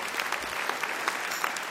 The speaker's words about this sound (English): Give yourselves a round of applause, ladies and gentlemen. It's fantastic.